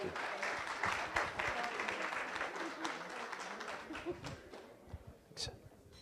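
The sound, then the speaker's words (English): A crowd claps steadily for a speaker, a dense wash of applause that holds for several seconds before gradually thinning out, with a few louder individual claps near the end. “Can I just get one more round of applause for our speaker”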